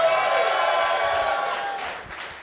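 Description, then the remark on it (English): An audience applauds with dense, steady clapping and some crowd noise, loud at first and gradually tapering off over a couple of seconds. “You clap, but at the time, that was an insult from a Kansas City perspective.”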